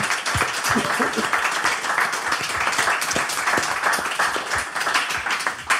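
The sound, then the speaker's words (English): A crowd applauds steadily for several seconds, a dense, continuous wash of many hands clapping at an even loudness with scattered sharper claps standing out. “So give yourselves a round of applause for that.”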